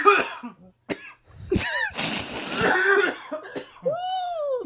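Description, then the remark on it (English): A person has a loud coughing fit: several sharp hacking coughs in quick succession, then raspy wheezing breaths and a strained, rising vocal gasp at the end. “Coughing out now.”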